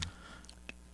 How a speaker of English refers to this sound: Here, I'm going to just chew on a mic for y'all.